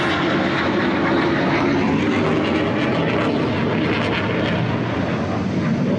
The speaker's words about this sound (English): I am so sorry, guys. It was a jet that went over us.